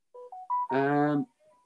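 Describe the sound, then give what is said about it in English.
A mobile phone goes off: three quick rising electronic beeps, then a louder, buzzy tone or brief voice lasting about half a second, ending with a faint beep. “your phone going off?”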